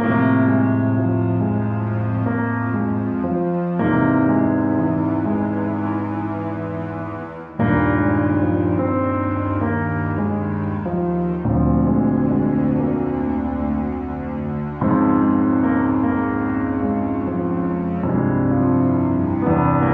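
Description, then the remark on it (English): The original theme song of How to Succeed in Evil played on a cheap electronic keyboard, with sustained, buzzy synthetic chords and a bass line. The melody shifts every few seconds, stays loud and steady throughout, and has no voices. “The original How to Succeed in Evil theme song was this, played by me on a cheap keyboard.”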